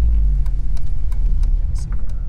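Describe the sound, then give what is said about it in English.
A car's engine drones in a steady, loud low rumble, as if heard from inside the moving vehicle while driving around West London, with a few faint ticks and clicks scattered over the top. “He stops the car and shows us the flats he used to live in”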